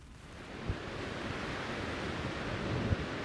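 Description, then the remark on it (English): A steady, hissing roar of ocean waves over a deep low rumble, with two brief dull thumps breaking through the wash, at the northwesternmost tip of the Aupura Peninsula, North Island, New Zealand, where the Tasman Sea meets the Pacific Ocean in a swirl of currents. No voices are heard. “It's called the meeting place where the Tasman Sea meets the Pacific Ocean in a swirl of currents.”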